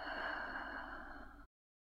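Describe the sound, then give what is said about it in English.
A steady, breathy, slow exhalation during a guided breathing exercise, lasting about a second and a half, soft, with no talking, ending abruptly in silence. “We'll hold the breath for a moment, and then we'll have a long, slow exhalation.”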